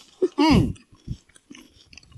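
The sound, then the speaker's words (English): Crunching of a crispy Trader Joe's snack resembling French fries: one loud, crackly bite followed by softer, scattered chewing sounds, with a brief murmured vocal sound mixed in. “my mouth is full. I will do it. Yeah, because I'm crunching.”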